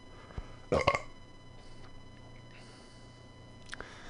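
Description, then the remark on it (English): A single short, loud burp near the start, followed by quiet background with a couple of faint clicks. “I did have to burp.”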